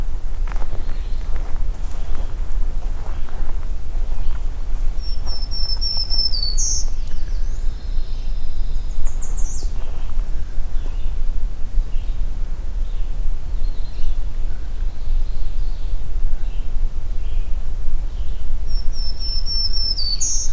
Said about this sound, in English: This is at a location where I've photographed and recorded black-throated green warbler, and by location I mean within about two trees distance.